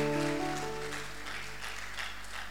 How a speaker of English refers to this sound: Hallelujah. Oh, clap for my interpreter. It's powerful.